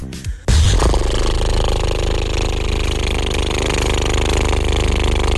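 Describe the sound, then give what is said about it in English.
A person vocally imitates a tractor engine: after a brief quiet start, a loud, steady, rumbling chug that holds unbroken for about five seconds. “This is my impression of a tractor.”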